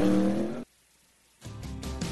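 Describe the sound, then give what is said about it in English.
A NASCAR race car engine roars loudly, then cuts to a brief silence before the car, its pit stop side service and refuelling complete, revs and pulls away with a rising growl and a hint of tire squeal. “Side service complete. Second can of Sunoco fuel in. He's down and away.”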